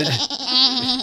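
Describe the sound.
A person imitates a goat, letting out a single loud, quavering bleat about a second long. The nasal, wavering tone rises and trembles, with no other talk during it.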